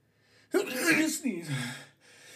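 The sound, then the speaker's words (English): A stifled sneeze bursts out, a sharp strained blast followed by a second tight, squeaky exhale, as someone tries to hold it in. “I have the weirdest sneezes because I try to fight it.”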